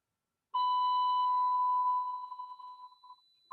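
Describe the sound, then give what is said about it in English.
A heart monitor's flatline tone as a training mannequin goes into cardiac arrest: one continuous, high electronic beep that holds steady and loud, then wavers and fades over the last second, ending with a brief blip. No one speaks. “So what the mannequin just did right now is flatline.”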